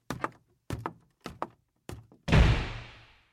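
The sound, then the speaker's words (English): Several quick, thumping steps stumble up a small staircase and lead into a loud, heavy bedroom door being slammed violently by a 16-year-old boy, its booming impact ringing out and fading over about a second. No one speaks. “Glared back at his father before stumbling up the small staircase and turning into his room where he slammed the door violently.”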